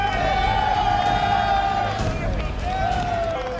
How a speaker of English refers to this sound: I was excited, but definitely not as excited as the men. They whooped in a way I had never seen before. They were like cheering. It was unreal. Let's just play the clip of Kareem coming in.